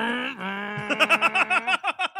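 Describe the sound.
A voice imitates Jake's motorcycle engine: a steady buzzing drone, then a quick run of about ten rhythmic revving pulses, fairly loud, with no talking.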